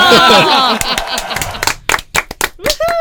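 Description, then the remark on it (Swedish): A couple of people clap by hand, around ten sharp, slightly uneven claps, after a burst of cheerful vocal whooping and laughter at the start. “Vi applåderar för att det är vårt 20 avsnitt.”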